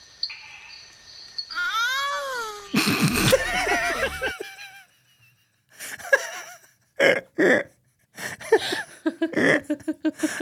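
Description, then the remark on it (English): A captured frog, puffed up like a balloon, cries out in a wavering, high-pitched wail that swells into a loud, harsh scream, followed by a string of short, sharp bursts in an uneven rhythm. “That was a frog. And, I didn't know that frogs could make that noise.”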